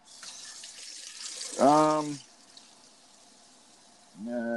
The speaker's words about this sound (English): Well, it's like, okay, I got to buy a Tanqueray. So drinking that right now. I'm going to pour myself another one.